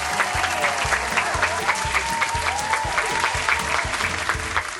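An audience at Sandy Cares Comedy Club applauds steadily as a host is introduced, a dense wash of clapping hands sustained at an even, fairly loud level for about five seconds, with faint crowd murmur blended in.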